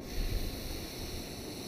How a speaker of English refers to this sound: So we start with some nice big deep breaths. So let's fill our belly through our nose.